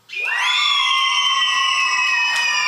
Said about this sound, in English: I want you to scream like you were just promised your favorite flavor of ice cream every day for the rest of your life